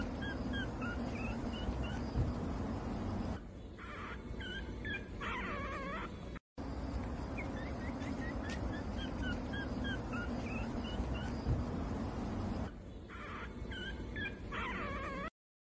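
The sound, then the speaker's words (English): A small dog outside a grocery store, greeting people as they leave, whimpers and lets out high, repeated yips in quick bursts over a steady background hum; the pattern plays twice with a brief gap between. “Oh, this little dog is basically the people are leaving the grocery store, and it's greeting everybody who's leaving.”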